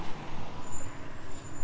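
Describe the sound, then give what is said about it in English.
A heavy truck arrives and rumbles, its low engine drone steady throughout, with a thin high-pitched air brake hiss running above it. No one speaks. “And this truck is coming in”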